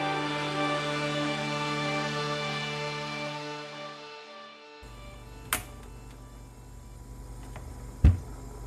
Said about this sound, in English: spending his time in the kitchen, opening the doors to the cabinets and refrigerators in hopes something edible might have grown in there since the last time.